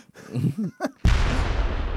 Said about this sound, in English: That's a rocket launcher. I thought it was a cannon. Thanks for shooting me with that.